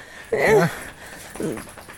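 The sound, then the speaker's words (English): A dog, Paisley, whimpers twice: first a louder, wavering whine with a rising and falling pitch, then a softer, shorter one a moment later. “Do you want to say anything to the internet? The whole world's listening to you.”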